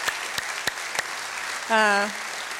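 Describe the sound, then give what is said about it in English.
An audience applauds mothers in a steady wash of applause, with a few sharp individual claps standing out early on and a brief tonal cheer rising over the clapping near the end. “So mom, we applaud you, moms all over that we applaud you.”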